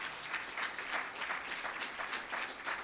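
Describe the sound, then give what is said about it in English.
A short burst of light applause from an audience, steady scattered clapping filling the few seconds at moderate volume with no voices standing out. “But that was a little clap.”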